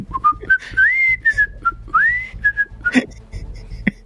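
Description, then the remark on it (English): Someone whistles the Animal Crossing video game theme tune: a bright, clear melody of held notes joined by quick upward slides, with a brief rustling burst near the end and soft background noise. “I wanted to hum the Animal Crossing coming.”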